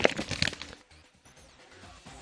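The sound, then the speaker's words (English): Paper being crumpled: a short flurry of crisp, crackling rustles at the start, then fading to faint, scattered crinkles and near quiet, with no voices. “Okay, I won't crumple the paper anymore.”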